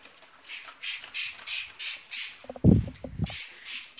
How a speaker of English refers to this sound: You can hear me scooshing some cleaner.